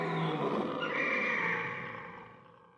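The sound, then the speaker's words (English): A single loud, drawn-out Tyrannosaurus dinosaur roar, deep and rasping with a growling rumble underneath, swelling at first and then fading away over a few seconds, with no talking. “Tyrannosaurus! Tyrannosaurus was the fiercest meat-eating dinosaur.”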